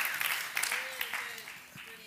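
A crowd applauds with a steady, dense crackle of many hands clapping, holding fairly even for about two seconds before thinning slightly at the end.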